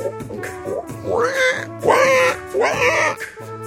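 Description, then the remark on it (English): A person's voice mimics a pig, making three loud, nasal oinking grunts in quick succession, with a softer snort just before them, with no other sound. “How about a pig?”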